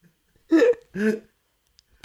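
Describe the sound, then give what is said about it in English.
Two short, squelchy arm-fart noises made with the inner elbow in quick succession, each a buzzy, wet burst about a quarter second long, fairly loud, with silence around them. “I have such mastery over the inner arm, like the elbow ditch farting.”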